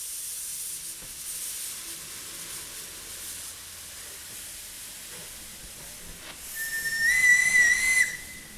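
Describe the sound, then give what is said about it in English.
A steady wash of escaping steam hisses throughout from a roughly 100-year-old historic steam train kept running by a volunteer association, then its whistle sounds one shrill, sustained blast near the end, louder than the hiss, holding a single high pitch before cutting off. “They maintain the technique of the 100-year-old train and keep them shining and running.”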